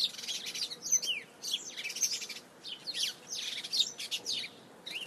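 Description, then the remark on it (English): Little birds bouncing around in a tree chirp busily, a dense overlapping flurry of high, quick tweets and calls that keeps going throughout, with a soft outdoor hush underneath. “The sound of birds is cool, isn't it?”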